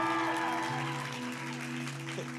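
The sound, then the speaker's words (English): A church audience applauds a woman being introduced in a dense, steady wash of clapping that holds at an even level throughout, with sustained low musical tones playing underneath. “So please give her another round of applause.”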